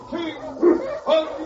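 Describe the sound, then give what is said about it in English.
Sled dogs being got up give two sharp, yelping barks about half a second apart over a steady background murmur of tonal whines. “Get the dogs up, King.”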